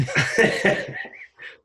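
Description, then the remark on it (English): A loud sneeze from one person: a sharp, forceful burst of breath that trails off into short, breathy after-sounds, with no talking. “And, oh, I think I'm going to sneeze. It's coming.”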